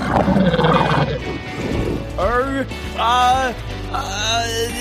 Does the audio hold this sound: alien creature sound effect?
yes